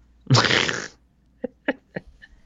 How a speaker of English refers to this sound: Like, for example, like, I'll be mad and then he farts. I'm not mad anymore.